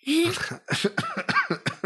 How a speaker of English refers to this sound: Sorry, I'm going to cough now.